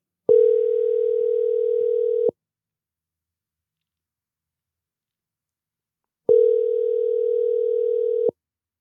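A phone line ringing on the other end of an outgoing call being placed: two long, steady electronic ring tones, each about two seconds, separated by a stretch of silence. No voices are heard.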